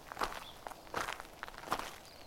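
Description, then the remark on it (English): Footsteps walking at an unhurried pace around a church lot where Alfred Hitchcock filmed The Birds, three distinct scuffing steps spaced roughly a second apart, each with a gritty, crunching texture over a quiet background hiss. No one speaks. “After the picture, we walked around the entire church lot.”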